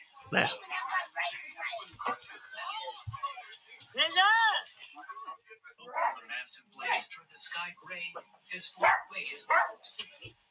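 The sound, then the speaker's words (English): A dog barks several times in short, irregular bursts, including a higher yelping, whiny bark, with indistinct voices and background noise mixed in. “That's a dog, obviously.”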